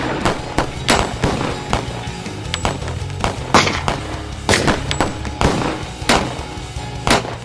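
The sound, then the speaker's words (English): Rapid, irregular bursts of gunfire crack out one after another in a courtroom shootout, bullets flying from all directions, some shots louder, others quieter, overlapping in a chaotic barrage with no voices. “But all hell broke loose, and the bullets began flying from all directions.”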